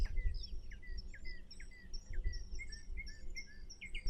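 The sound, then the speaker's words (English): Birdsong in the woods: a steady stream of quick, high chirps and short whistled notes repeating throughout, over a soft low rumble, with no one talking. “The songs of birds.”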